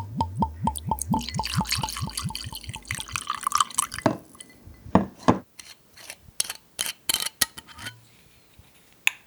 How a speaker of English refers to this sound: A sound that is quintessentially my nanny is the clinking of her daily bell scotch and ice cubes. For as long as I can remember, her one glass of scotch has been a staple in her evening routine, and living with her now, things are no different.